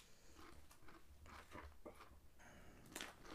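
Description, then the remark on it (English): Crunchy biting and chewing of a big mouthful, with a series of irregular, moist crackling bursts and a louder crunch near the end, no talking. “I had too much. Yeah. I literally bit off more than I could chew.”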